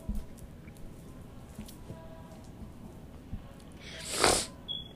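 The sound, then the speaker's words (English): A single wet, breathy sniffle from a person's nose near the end, loud, with a softer trailing sniff right after, amid quiet with a low background rumble and no talking. “I'm sorry, like, me sniffling is so disgusting, but yeah.”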